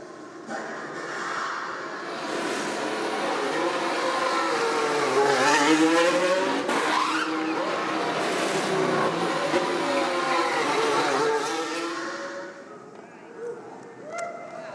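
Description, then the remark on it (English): A high-pitched Formula 1 race car engine whines loudly, its pitch sliding down and back up as it slows and revs while pulling off the track down the pit lane toward the garage for a pit stop, before the sound fades away near the end. “As a car pulls off the track, down the pit lane, and heads towards the garage to stop in the box for an adjustment.”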